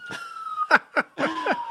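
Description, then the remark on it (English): An emergency vehicle siren sounds in the background, a steady high tone cut by a series of quick sweeping whoops, moderately loud, with no one talking. “speaking of audio in the background here, some my local radio station, the Siren FM.”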